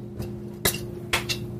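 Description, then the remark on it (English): An iced martini glass clinks a few times as it's picked up and set down, two sharper taps standing out among lighter touches, over a steady low hum, with no one speaking. “And then we'll grab a nicely iced martini glass.”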